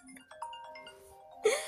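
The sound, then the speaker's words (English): A phone ringtone for an unexpected incoming call plays a short series of clear, sustained melodic tones at moderate volume, followed by a sudden louder burst of sound at the very end. “Unexpected phone call.”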